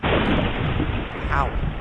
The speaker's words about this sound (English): Wow. We have, just as an aside here, we have a really bad storm going on here. So I'm hoping it doesn't cut power out on me in the middle of this. Anyway, I will continue. Just really a lot of lightning going on.